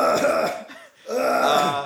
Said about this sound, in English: Any final coughs? Any final coughs?